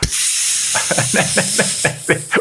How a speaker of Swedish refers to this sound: Så pyste luften ur Santa Barbara.